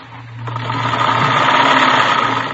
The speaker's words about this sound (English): She was sitting calmly at a sewing machine, stitching ruffles on a dress.